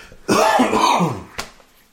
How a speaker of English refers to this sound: Oh, I hit recording and you start coughing.